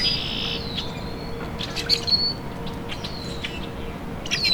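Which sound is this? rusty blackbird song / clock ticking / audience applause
rusty blackbird song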